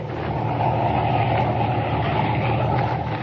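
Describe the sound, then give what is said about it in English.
A car's engine rumbles steadily and fairly loudly throughout, a continuous low motor drone with no voices over it. “And presently the dim shape of the car looms out of the trees.”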